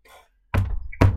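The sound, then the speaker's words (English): Two heavy, dull knocks on a front door, about half a second apart, each a low thump with a brief ring after it. No voices. “And as you knock...”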